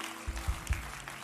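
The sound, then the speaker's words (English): A church audience breaks into applause to welcome everyone present, a dense wash of many hands clapping together with a few low thumps, steady and moderately loud for about a second. “Let's give everybody a round of applause.”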